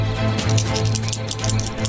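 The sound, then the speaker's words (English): Eight six-sided metal dice (8d6) rolled during a tabletop role-playing game rattle and clatter across a tabletop, a rapid, irregular stream of bright clicks lasting about two seconds over a low, steady hum. “Oh, these metal dice are weird.”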